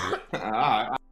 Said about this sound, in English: Man, you got my blood pressure up because you got me coughing.